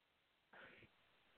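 A single short, muffled cough sounds, fairly soft, followed by near silence and a brief click at the very end.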